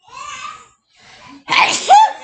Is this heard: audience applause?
no